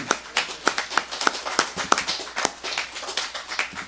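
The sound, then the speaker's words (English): An audience applauds God in praise, a dense patter of many overlapping hand claps with sharp accents poking through, holding steady and fairly loud for several seconds with no voices. “So when you guys applaud him loud, because it was all him.”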